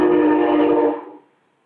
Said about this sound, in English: You hear the choo-choo train in the back? Oh, yeah. We definitely heard the choo-choo train. Yeah, that's in between me and the beach. Yeah, I'm about a block and a half from the beach.